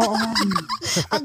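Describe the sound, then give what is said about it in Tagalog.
A rooster crows in a short, warbling burst with rising and falling pitch, clear, while faint voices murmur underneath. “Oo, tsaka boy pa yung manok ninyo. Diba? Oo, yung manok, tumitila doon.”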